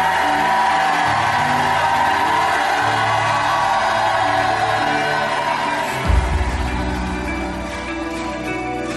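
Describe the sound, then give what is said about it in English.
A large audience shouts and cheers continuously, a loud, dense roar of many voices with whoops rising above it, sustained throughout with a low rumble swelling near the end. “Lift your hands and shout like you never shouted.”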